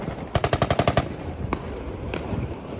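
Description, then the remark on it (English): A quick burst of about eight machine gun shots in rapid succession, then two separate single shots spaced apart, echoing outdoors over a low rumbling background, fired by Serb police in a militarised drill in October on a mountainside overlooking Sarajevo. “That gunfire comes from the Serb police force in a heavily militarised drill they carried out in October on a mountainside overlooking Sarajevo.”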